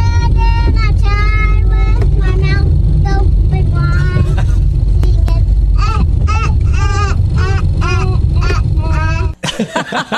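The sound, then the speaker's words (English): A young girl sings a children's song in a high, bright voice in a car being driven around, her melody steady over the low rumble of the car engine, ending with a brief noisy shuffle. “Obviously, she sings it when we're in the car just driving around.”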